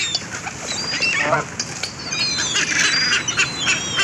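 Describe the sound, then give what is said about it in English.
A noisy crowd of geese and ducks honking and quacking all around, close and continuous, with overlapping calls building into a loud, busy chorus. “I'm now surrounded by ducks and geese.”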